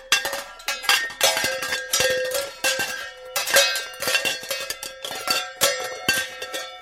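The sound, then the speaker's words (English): A bag of metal pans clangs and clatters together in a busy, irregular jumble, with bright ringing tones and sharp hits overlapping throughout. No one speaks. “Well, with all of those trailers around, I'm sure when the wind blew through there, it sounded like our bag of pans that we're getting ready to go get.”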